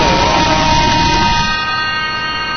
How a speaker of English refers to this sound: But there's the final siren here at Greenway Oval.